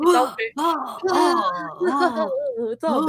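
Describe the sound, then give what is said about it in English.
A voice imitates someone gasping for air, with strained, wavering vocal sounds and breathy bursts coming in quick succession, fairly loud for about three seconds. “immediately Kirk can't breathe and he's on his knees and he's gasping for air”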